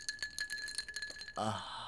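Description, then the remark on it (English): Ice cubes clink rapidly against a glass, a run of bright, bell-like chimes with a lingering ring, then a brief different sound cuts in at the end. “It sounds like the people, like the Salvation Army bell ringers.”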